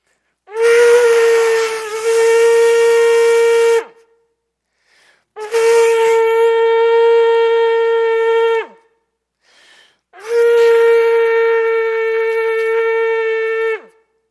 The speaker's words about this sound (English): And when they entered through the water gate, the shofar, or trumpets, would blow three times.